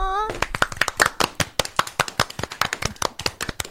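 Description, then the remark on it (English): A round of applause from a small group, quick irregular claps crowding together and carrying on steadily for several seconds, fairly loud, after a brief vocal sound at the very start. “A round of applause.”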